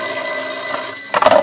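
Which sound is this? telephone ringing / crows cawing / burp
telephone ringing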